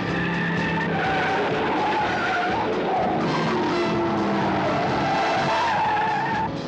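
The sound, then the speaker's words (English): A car skids loudly and continuously during a chase in a trailer for the film Corvette Summer, tires squealing with shifting pitch over a roaring engine, sustained for several seconds with no voices. “On the trail of a stolen Corvette. Stop this car! Stop it!”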